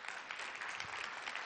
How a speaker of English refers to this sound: Yes, you may clap.